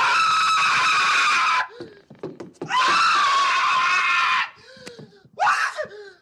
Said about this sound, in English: He grabs and puts him on on Harry's face. And we get like the greatest cinema scream of all time. Yeah, amazing.